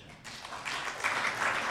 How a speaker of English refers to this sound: Oh, you guys don't know what's coming. So, you're clapping now.